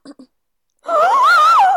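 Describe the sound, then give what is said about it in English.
After two brief soft vocal sounds and a pause, someone lets out a loud, exaggerated dramatic gasp that stretches into a wavering, sung-like tone lasting nearly a second. “And then the mom, who is not a good actor, does the biggest gasp I have ever seen.”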